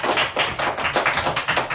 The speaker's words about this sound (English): why is Austin the only one clapping in chaos?